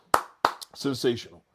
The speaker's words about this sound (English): Give the brother a round of applause for that.